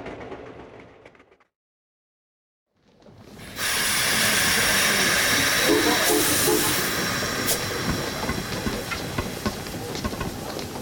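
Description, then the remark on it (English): A steam train at a station: a low rumble, a brief silence, then a loud, sustained blast of hissing steam fills the air, steady until the end. “but this isn't the London train.”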